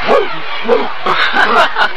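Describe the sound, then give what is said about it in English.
A small dog, Pugsley, out with its owner, gives a run of short, yappy barks, about five in two seconds, fairly loud over a steady hiss of background noise. “Hey, who's that guy over there with the dog?”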